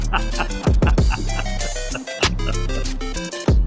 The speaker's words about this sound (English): Right, kids. Bump this shit in your car right now. And that comes courtesy of the official Trap Remix, Bass Boosted. On Trap Music now on YouTube.